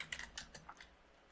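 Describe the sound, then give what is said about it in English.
Rapid, light keystrokes clatter on a computer keyboard as names are typed out, a quick burst of about six clicks, fading into quiet room tone with no voices. “Who was I typing out?”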